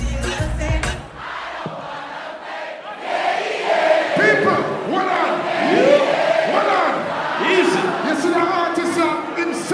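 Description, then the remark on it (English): A club crowd in Atlanta cheers and shouts during the DJ's dance hall section, about ten seconds, loud and steady, with overlapping whoops and yells rising out of a dense wash of voices after a brief rumbling start. “The crowd loves it.”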